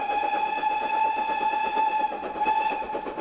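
A little steam engine on the Vale of Rheidol Railway in Aberystwyth, mid-Wales, chuffing in a rapid, steady rhythm, with a sustained whistle tone sounding over the chugging throughout. No one speaks.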